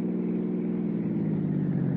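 A steady car engine drones at cruising speed, a continuous low hum with road rumble, as the car drives out through Westwood and Santa Monica and north along the coast highway, with no voices.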